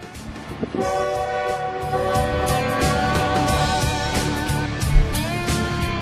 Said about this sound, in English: Here comes the train, baby. Here comes the train.